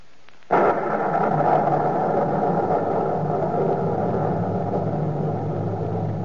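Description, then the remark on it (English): Thunder crashes in abruptly and keeps rolling as a loud, deep, sustained rumble that fades only slightly over several seconds, with no voices. “Soul in the thunder of the night.”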